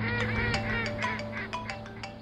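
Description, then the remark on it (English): A flock of ducks quacks and honks in a busy, overlapping chorus, short nasal calls tumbling over one another, with no voices. “You can't park in the duck hut.”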